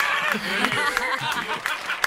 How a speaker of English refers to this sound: Cue up applause and celebration.